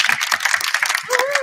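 An audience breaks into a round of applause: many hands clapping in a dense, steady patter, loud and continuous, with a brief cheer or whoop rising over the clapping near the end.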